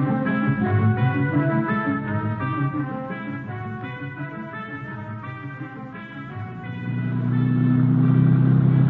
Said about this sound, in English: Merslag and I head out in his auto.